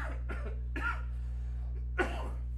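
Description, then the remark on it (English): A coughing fit from CBD: three or four rough, rapid coughs, a short pause, then one final forceful cough, all over a steady low electrical hum. “CBD cough.”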